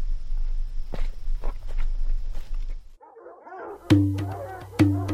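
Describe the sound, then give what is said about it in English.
Rumbling footfalls of running animals, then a pack of dogs, led by a man, breaks into excited yelping, with two loud barks standing out over the clamor. “He's got Ivan with him this time, leading a pack of dogs.”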